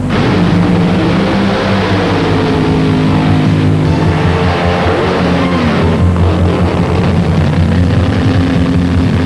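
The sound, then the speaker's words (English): A streamlined dragster engine roars loud during a drag race run, a dense, throbbing drone with deep harmonic rumble and a harsh, noisy top, steady and unbroken with no voices. “The streamlined dragster came through the crash in remarkably good condition,”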